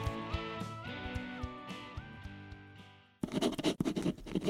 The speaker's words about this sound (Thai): พอผมเอาปากกาขีดข้อความนั้นทิ้งไปจากกระดาษ